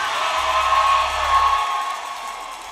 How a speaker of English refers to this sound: I need everybody that's keeping it real this morning just to scream at me right there.